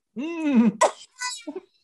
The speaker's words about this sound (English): But I do find when you cough up the sand, that's a little bit sexy. It feels like you're coughing up little, very particular bits of love for me.